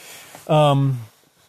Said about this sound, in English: I'm hearing cows are freaking out about something across the road.